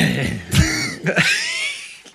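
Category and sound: human body sound, throat clearing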